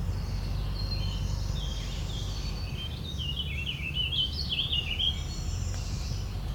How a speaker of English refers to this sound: Picking up orchard oriole and warbling vireo. And orchard oriole is here. It is singing.